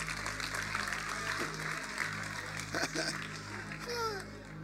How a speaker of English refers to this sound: Can you clap for them as you take it?